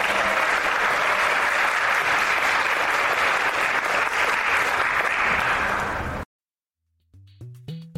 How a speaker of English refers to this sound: And how about a round of applause for our moderator?